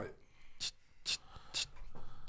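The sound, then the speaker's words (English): Typing notes on a device: three crisp, evenly spaced taps land about half a second apart, fairly distinct above a faint, low background murmur. “Why are you typing in your notes?”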